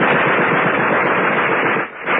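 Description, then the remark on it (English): A loud, sustained burst of rapid machine gun fire, the shots rattling in quick, even succession for about two seconds before a brief dip and a final few rounds. “There was a sudden burst of machine gun fire.”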